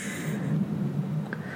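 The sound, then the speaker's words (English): A dog snoring directly into the microphone, a low, rough rumble with a steady breathy buzz that holds for over a second and a half at moderate volume, with no voices over it. “Sorry, my dog snored directly into the microphone just then.”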